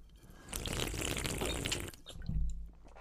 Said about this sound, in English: Let's take a good ASMR sip here.